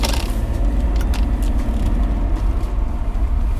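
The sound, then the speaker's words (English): A car drives steadily along Route 6/202 toward the Bear Mountain Bridge over the Hudson River, its low engine and tire rumble constant, with a few brief rattling clicks overhead and no one speaking. “I'm going to go across the Bear Mountain Bridge over the Hudson River.”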